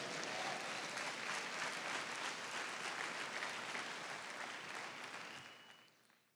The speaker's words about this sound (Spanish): Me alegra que tú aplaudas, pero la convicción debe ser mayor, más fuerte, más intensa aún que lo que podemos hoy palmear delante de Dios.